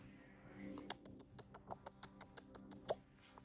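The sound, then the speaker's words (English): A pet reptile named Iggy paws at a Chromebook laptop, making a dozen or so light, irregular clicks and taps over a soft background hum, with no one speaking. “Iggy's caressing your Chromebook.”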